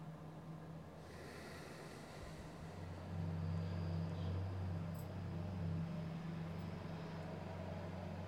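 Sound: passing road traffic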